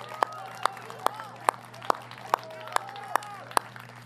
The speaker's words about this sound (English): Can we actually have all of our life group leaders stand real quick and look around for your life group leader? And I want to give them first just a huge round of applause, a huge thank you.